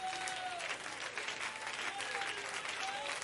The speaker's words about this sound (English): Oh, somebody clap now. I wish somebody would clap right now. I wish somebody would clap right now.